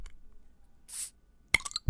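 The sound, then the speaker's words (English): A lager bottle is opened with a short, soft fizzing hiss, followed moments later by a quick cluster of bright glassy clinks and a dull low knock at the end. No one speaks. “Shall we open them on mic for everyone?”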